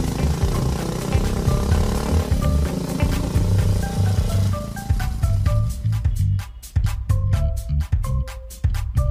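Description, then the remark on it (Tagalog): A motorcycle carrying a rider and a passenger holding on tightly rumbles loudly and steadily, then its firing turns into sharp, rapid pulses as it revs harder and picks up speed. “Sige na, kumapit ka lang na mahigpit at bibilisan ko pagpapatakbo nitong motor.”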